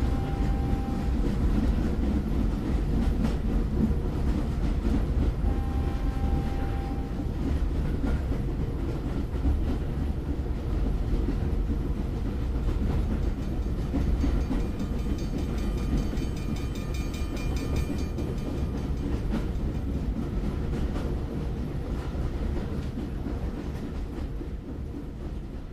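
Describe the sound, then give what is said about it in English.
Several train sounds layered into a relaxation and sleep track: a steady, dense rumble of a train rolling over rails, with a continuous clickety-clack and low mechanical drone throughout, loud, fading slightly toward the end. “uses a combination of different train sounds, which when layered the right way, can block out other noises surrounding you and actually help you to sleep better.”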